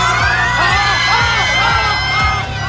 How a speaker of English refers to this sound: The world's first scream choir and what it took to pull it off.